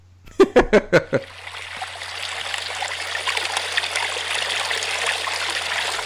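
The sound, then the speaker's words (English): A few quick, choppy bursts open into the steady rush of a flowing stream, a continuous bright babbling of water that holds at an even level until the end. “So, we will be back after the water.”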